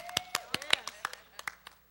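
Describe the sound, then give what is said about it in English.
An audience claps their hands together in praise to God in a steady, slightly uneven rhythm, sharp bright claps about every fifth of a second, with voices sounding faintly underneath. “Clap.”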